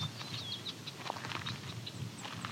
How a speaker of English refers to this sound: There's another Savannah Sparrow song.